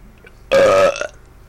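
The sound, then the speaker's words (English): A single loud belch bursts out abruptly and rasps for about half a second with a throaty, rattling buzz, followed by a brief softer tail before quiet returns. “So, Fox News, this belch is for you.”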